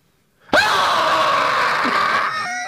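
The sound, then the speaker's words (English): A man lets out a loud, sustained scream that starts abruptly and holds for about two seconds at full strength before tapering slightly, harsh, with no other voices. “And then, yeah, he screamed and then went, that's pretty scary, isn't it?”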